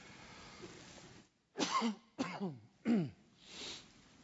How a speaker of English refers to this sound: Excuse my cough. We got a little bit run down on our trip.